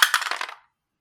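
A quick burst of obsidian dice rolling and clacking together, several rapid bright clicks tumbling for about half a second, then stopping into silence. Moderately loud, with no talking.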